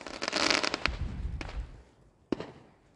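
Fireworks go off in rainy, windy weather in a dense crackling burst of rapid pops over a low rumbling boom, then fade before one sharp, sudden bang rings out and trails away.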